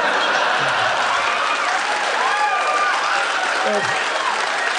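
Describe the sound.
Steady audience applause for the payoff line 'I like that hat, mate' fills the whole stretch, a dense, even wash of clapping with a few faint voices and cheers mixed in.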